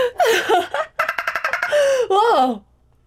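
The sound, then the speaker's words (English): A person vocally imitates a jungle bird call: a shrill whooping cry, a run of rapid staccato chirps, then a warbling call that slides downward and trails off into silence. “Just a random bird in the jungle that you can hear.”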